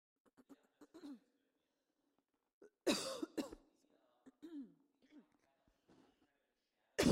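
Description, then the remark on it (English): Two sharp coughs burst out in quick succession, loud against otherwise quiet surroundings, with soft throaty murmurs around them and a brief harsh burst at the very end. “Sorry, I had to cough.”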